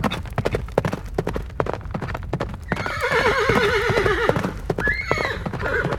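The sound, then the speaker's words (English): Hooves clip-clop in a quick, steady rhythm, then a horse lets out a loud, wavering whinny, followed by a shorter second neigh as the hoofbeats continue underneath. “Part of what gave the Roaring Twenties its name was the way horseless carriages, as they were first called, made so much more noise than horses.”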